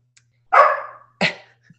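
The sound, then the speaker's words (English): A dog lets out two loud barks in quick succession, the first longer and more drawn out, the second shorter and sharper, with quiet around them. “Holy Lord, there's a dog.”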